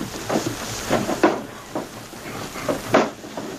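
Wooden drawers in the bunk of a cabin being pulled open and rummaged through while searching for a jewel box, a series of irregular knocks, slides and clatters, with no voices.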